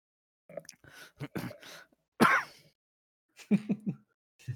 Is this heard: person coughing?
yes